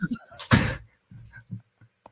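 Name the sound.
door thudding shut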